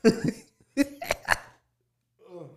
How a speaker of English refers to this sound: Man, them hiccups, boy.